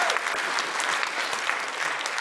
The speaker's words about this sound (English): It's very early for applause, bold, but good for you.